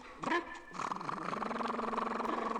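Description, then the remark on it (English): Mickey, a trained sea lion in the sea lion act at Wegefourth Bowl, gives a short throaty call, then a long, steady, pulsing sputter that imitates a slow motorboat putt-putting along. It is fairly loud, with no talking over it. “Come on, Mickey, let's do a motorboat. A slow one, real slow motorboat.”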